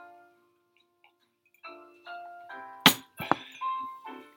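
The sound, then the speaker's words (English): A vape drops with a sharp thunk, followed quickly by a second lighter knock as it settles, over soft melodic electronic tones in the background. “What was that? Oh, that fell down. That's my vape.”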